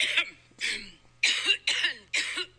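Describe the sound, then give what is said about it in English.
A woman in a played clip coughs hard five times in quick succession, each cough a harsh, raspy burst, loud with no talking, the bursts grouped into a strained fit. “But anyhow, looks like she's coughing up a lung.”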